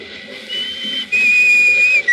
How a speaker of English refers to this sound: Remember that whistle? Yes. What about it? I think it might prove no end valuable in this particular emergency.